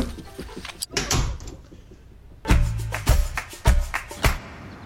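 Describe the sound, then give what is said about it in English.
A door is opened and shut as a woman runs out, with several solid knocks and clatters, a burst of rattling thuds followed by a few sharper bangs, heard alone without any talking. “Gosh golly, she's dressed again and running out the door.”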